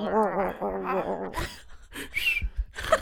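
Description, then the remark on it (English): A koala grunting, played as a sound effect by an Alexa device, in a run of wavering, harmonic vocal sounds that rise and fall quickly, followed by several rough, breathy bursts and snorts of moderate loudness. “Here's a koala grunting.”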